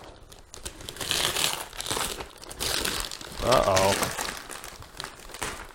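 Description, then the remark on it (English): Wrapping paper crinkles and rustles steadily as a wrapped Christmas gift, a Lego Voltron set, is torn open, with a brief spoken exclamation partway through. “I want the gift to be awesome for …, so would you please wrap it?”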